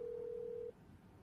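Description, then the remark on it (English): A single steady telephone ring tone sounds for under a second and then cuts off, leaving faint background hiss, from an outgoing call on speakerphone that goes unanswered. “Phone a friend here on Beard Oil Roulette. He's not going to answer.”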